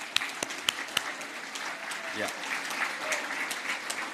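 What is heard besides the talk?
round of applause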